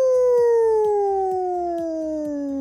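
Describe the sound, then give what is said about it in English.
A person imitates a wolf howl: one long, loud wail sliding slowly downward in pitch, over a steady, rhythmic low thumping. “The Wolf. Ow, ow, ow.”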